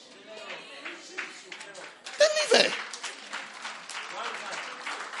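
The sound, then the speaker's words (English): An audience breaks into loud clapping about two seconds in, a dense burst of applause mixed with crowd voices that eases slightly but keeps going to the end. “I don't even know why you are clapping, but I mean, don't even spend 20 seconds with that girl.”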